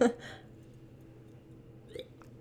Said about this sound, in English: So I'm just going to take a quick sip so I don't cough.